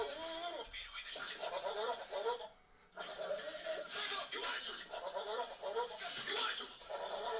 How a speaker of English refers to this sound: Eh, that was cool, man. Have you ever seen the goat version? Goat?